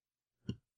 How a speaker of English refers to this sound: I'm clicking the link again so I can see where the store is.